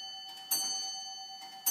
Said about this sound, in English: A clock Sorry. Is nothing. I meant to switch it off before we started.